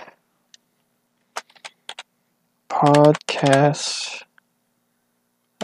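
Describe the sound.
A handful of sparse, crisp clicks from a physical computer keyboard, fairly quiet, followed by a brief burst of wordless voice before a final lone click.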